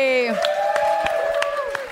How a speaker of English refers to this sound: And before we go, a huge round of applause for our guest, Stephen Bailey.